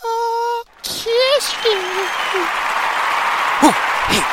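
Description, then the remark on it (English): A brief steady electronic tone cuts off, then an applause sound effect takes over: dense, continuous clapping from a crowd, with scattered whoops and cheers rising above it, steady and loud throughout. “I'm going to take it off and bring me in with a clap.”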